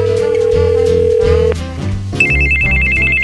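A phone rings on an outgoing call, with a loud, steady electronic tone that holds, breaks off briefly, then returns at a higher pitch. Nobody speaks.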